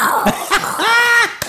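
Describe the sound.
A person does a cat impression: a couple of short, rough throaty bursts, then one drawn-out tonal meow whose pitch swells and falls, followed by a quick sharp catch.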